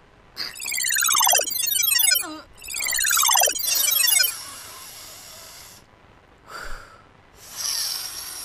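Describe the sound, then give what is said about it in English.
Two long, loud, exaggerated sniffs with a whistling, falling tone, followed by a short quieter snuffle and a final breathy inhale. No one speaks. “Listen to how much more powerful your sniffing is now that you have all three noses.”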